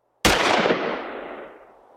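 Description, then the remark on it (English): A single loud gunshot, depicting a man shot in the head as he is taken out of a car in Caswell Canyon, cracks out after a brief silence, its sharp blast trailing off into a long, fading echo. No voices are heard. “Just shot him right in the head as soon as he got him out of the car.”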